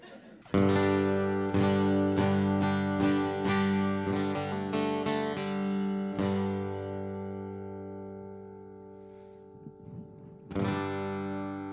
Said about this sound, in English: It's just a G chord strummed a couple times.